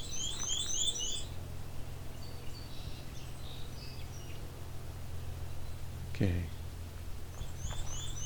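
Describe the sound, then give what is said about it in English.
A Canada warbler sings a quick, jumbled burst of high, bright chirps, then falls silent before a second phrase starts near the end, over a steady low rumble; recorded in an area close to a road. “This isn't too far from where the Canada warblers are.”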